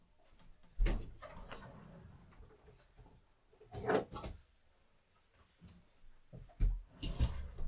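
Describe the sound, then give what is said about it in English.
Several hollow thuds and clatters as a water bottle is knocked over and tumbles on a hard surface, with a louder rattling bump in the middle and more knocks near the end. “God damn it, I keep knocking my water bottle over.”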